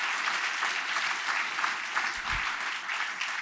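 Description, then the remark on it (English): An audience claps steadily for a few seconds at the announcement of a new player coming to lead the team. The clapping is a dense, even patter of many hands at a fairly constant level, with no voices heard over it. “Hey, if you want to applaud, you can, all right?”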